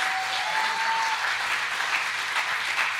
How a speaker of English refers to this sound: Can we have a hand clap for the children's church, please?